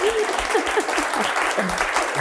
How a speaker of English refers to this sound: Oh, I feel like I stepped on your applause. That's like the worst thing you can do. No. That was fine. I get very uncomfortable if the applause goes on too long.